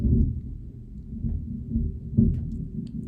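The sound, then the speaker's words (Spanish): Deep, rolling thunder rumbles steadily for a few seconds during a thunderstorm, swelling and easing in low waves, with no voices over it. “I hope you like thunderstorm sounds.”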